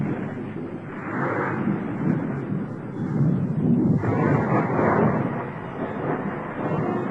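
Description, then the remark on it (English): A deep, continuous rumble of thunder rolls on for several seconds, swelling and easing in waves with a broad, roaring low-end texture, fairly loud and with no voices. “The folklore of the Sioux Indian tribe tells of a party of Sioux warriors who were out hunting during a thunderstorm.”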